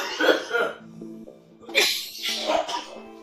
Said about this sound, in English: Oh yeah. Dab cough with the boys. Just coughing up his lungs, you know.